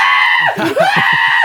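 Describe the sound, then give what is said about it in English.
A voice lets out a loud, drawn-out imitation of a scream, wailing continuously with harmonic tone and pitch that dips and swoops midway, heard alone. “Screaming like, no, inconsolable mess.”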